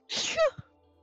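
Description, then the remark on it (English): A single loud sneeze: a breathy explosive burst that ends in a brief voiced squeak, followed by a soft little thump, then quiet. No one speaks. “Bless you. I don't get it.”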